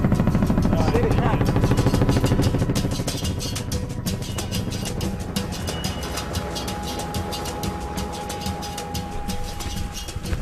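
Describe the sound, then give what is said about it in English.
A logging truck's heavy engine rumbles loudly, its deep drone strongest at first and then easing slightly as it carries on steadily, with a faint whine appearing later. “Hey. Logging truck.”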